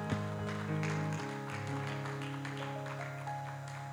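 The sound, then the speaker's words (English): An audience claps hands unto the Lord before being seated, in a steady, dense patter over sustained keyboard chords, the clapping continuing evenly for several seconds at moderate volume with no voices. “Why don't we clap our hands unto the Lord one more time before we're seated?”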